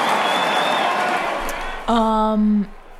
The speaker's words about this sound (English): It was mostly just a repeat of the same thing that happened during the tribute video. So people were just booing their heads off.